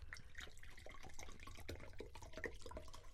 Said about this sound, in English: Dude, pour me some water.